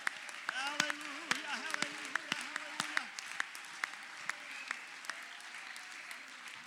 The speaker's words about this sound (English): Come on and clap your hands to the Lord.